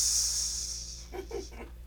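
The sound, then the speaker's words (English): A voice holds a sharp, piercing hissing 'sss' for about a second, imitating a sibilant S sound, followed by a few quick voiced syllables. “And that maybe that's why, like, the streetcar named Desire is so famous, because it's burned into people's brains from their ears from the piercing sound of the S.”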